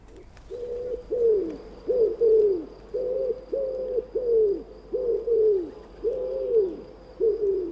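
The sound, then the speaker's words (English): A pigeon with a dark grey head, white neck patches and metallic green on its neck coos steadily, repeating soft, low, throaty notes in a rhythmic series of about ten phrases, with no other sounds around it. “It has a dark grey head with these lovely white neck patches on its neck and metallic green on its neck as well.”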